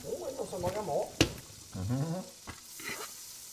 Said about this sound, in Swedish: Och hör ni det välbekanta ljudet av smör som fräser i en panna. Vi gör oss redo för att slänga i brödet.